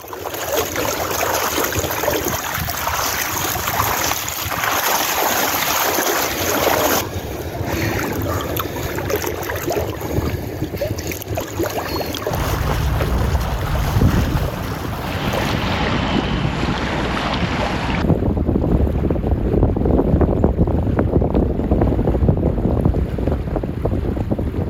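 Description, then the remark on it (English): Continuous rushing water of the Rio Grande river fills the scene, mixed with heavy wind buffeting the microphone. The sound is loud and steady throughout, with no voices, and the texture shifts partway through. “Meanwhile, in the gurgling waters of the Rio Grande,”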